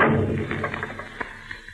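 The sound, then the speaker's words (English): A door being pushed shut: a heavy, low thud opens the moment, followed by a handful of lighter knocks and rattles that trail off. No one speaks. “Close it, that door! Hold it!”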